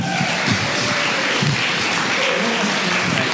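A crowd at a storytelling event claps steadily for the next storyteller, a dense and even wash of many hands applauding at a fairly loud level, with a faint murmur of voices underneath.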